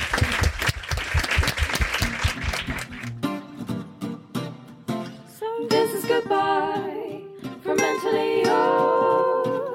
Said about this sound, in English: Can we have a huge, huge round of applause for our wonderful panel?